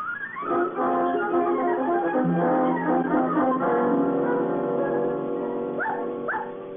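A dog whimpers and whines in a drawn-out, tonal way, ending with a couple of short rising yelps. The sound is fairly loud, with no talking.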